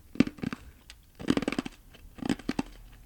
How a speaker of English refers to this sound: So he's got ice cubes in his mouth and he's going to do something, aren't you? Guys, let me know if this sounds soothing.